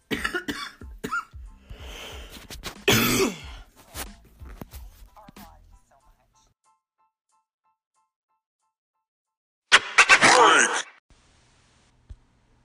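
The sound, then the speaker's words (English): A harsh coughing fit from a person fighting a terrible cough: a run of rough coughs and strained breaths, a few seconds of silence, then another loud cluster of coughs, ending with a faint click. “Sorry, I had to take a cough break.”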